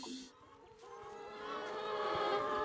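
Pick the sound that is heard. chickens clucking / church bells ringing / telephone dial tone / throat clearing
chickens clucking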